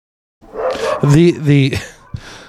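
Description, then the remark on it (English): Dogs bark angrily, with two loud, drawn-out, snarling barks in quick succession amid rough growly noise, followed by a brief softer yelp. “Well, the dogs are angry.”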